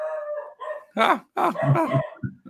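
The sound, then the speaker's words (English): A dog howls in long, wavering cries, then breaks into a few sharp, loud barks, with no one speaking over it. “Oh, we got dog issues here.”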